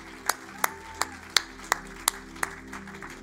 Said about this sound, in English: Let's give a hand clap unto the Lord today. Woo!